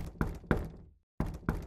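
Heavy, thumping knocks on the back door of a house in the middle of the night, struck in two pairs with a short pause between them, each blow loud with a brief booming ring; no voices.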